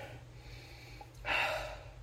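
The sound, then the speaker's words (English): A single fairly loud sniff of tequila from a glass: a half-second breathy inhale that rises quickly and fades, over a low steady background hum. “Let's take a sniff.”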